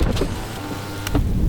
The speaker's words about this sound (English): I'll stop for him and roll down the windows.